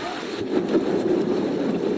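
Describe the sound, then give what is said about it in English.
Rain starting to fall: a steady, even wash of rain patter with a dense, crackling hiss that holds at a constant moderate level throughout, with no voices. “It's starting to rain.”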